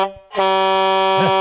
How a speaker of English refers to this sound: here's Bobby's truck horn as he's driving the semi-truck that he drives every day.